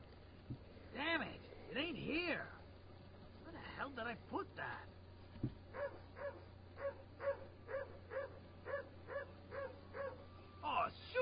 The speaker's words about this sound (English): Dogs aren't fenced. Sounds like a whole pack of them. Man, I ain't going outside with a pack of wild dogs running loose.